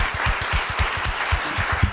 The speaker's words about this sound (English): Okay, let's give one more round of applause. Continue applause.